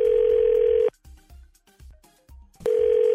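A telephone call ringing through as hosts of a morning show on 102.9 The Wolf in the Twin Cities call a woman: a loud, steady electronic tone sounds for about a second, breaks into a pause filled with faint clicks and low thumps, then the same tone returns.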